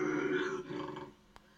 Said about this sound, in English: That's the fucking sound. That fucking growling, grumbling, whatever you want to call it. It's giving me fucking chills for a multitude of reasons, obviously.